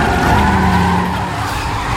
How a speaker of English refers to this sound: Engines roaring.